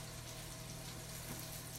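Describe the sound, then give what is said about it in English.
A quarter cup of water runs steadily into a measuring cup for a couple of seconds, a soft, continuous splashing hiss with a low hum underneath, fairly quiet and with no talking. “All right, so I need a quarter cup of water.”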